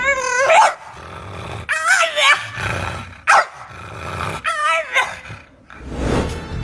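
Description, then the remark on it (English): A dog lets out frantic, high-pitched yelps mixed with rough growling, in several agitated bursts over a few seconds, fairly loud with no talking. “The sound Willow was making. I'll play it for you now.”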